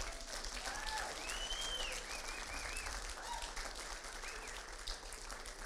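An audience applauds parents and their children steadily for several seconds, a dense, even wash of clapping with a few high cheers and whoops rising over it, holding at a constant level throughout.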